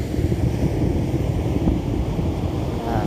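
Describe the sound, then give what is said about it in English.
Steady roar of ocean surf mixed with gusty wind buffeting the microphone, a dense, continuous rumble with no voices, fairly loud throughout. “I love this water. I love this ocean.”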